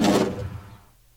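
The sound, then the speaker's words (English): A single desk drawer slides shut with a solid thud, followed by a short reverberant tail that fades out within a second. No voices are present. “It's the sound of a decked drawer closing. With a little reverb.”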